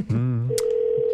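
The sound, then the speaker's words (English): A brief voiced sound gives way to a steady, unbroken electronic telephone tone, loud, like an outgoing call ringing on the line. “Pick up the phone. It's us.”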